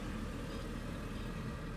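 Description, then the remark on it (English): A steady low rumble of a car driving past behind a police station, with continuous engine and road noise at moderate volume and no voices. “Except for when a car just drives by like that.”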